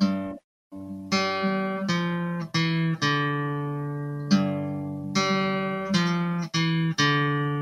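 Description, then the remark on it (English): A guitar plays a single-note riff of about nine plucked notes at an unhurried, slightly uneven pace, each note ringing bright and sustained before the next. There is no talking. “Let me see if I get my guitar real quick.”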